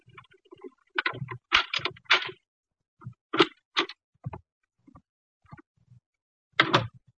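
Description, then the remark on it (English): A key scrapes and rattles into the lock of an apartment door, producing a burst of irregular metallic clicks and jiggles, fairly quiet, with short pauses between the clusters and no talking. “Then we heard muffled footsteps coming down the hall and a key inserted in the lock of the apartment door.”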